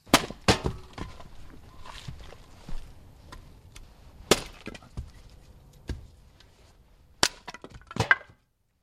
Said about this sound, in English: is chopping wood for his business, the Finnish sauna.